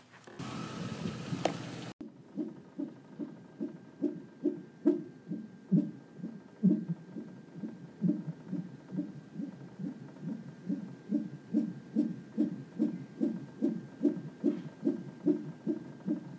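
An unborn baby's heartbeat on a hospital monitor: fast, steady whooshing pulses repeating evenly and fairly loud, after a short burst of static at the start. Nobody speaks.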